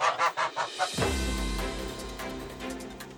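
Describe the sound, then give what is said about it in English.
A goose in a poultry pen, in the rain, honks in a quick run of about six nasal, rhythmic calls over roughly a second, then a loud, sustained low droning sound takes over and continues steadily. “Yeah, we have the chicks, we have the goose, and we have something here. As you can hear that sound.”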